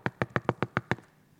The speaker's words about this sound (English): And all of a sudden at midnight, there was another knock at the door.